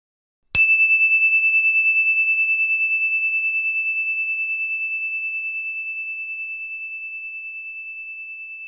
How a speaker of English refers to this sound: Here comes the bell.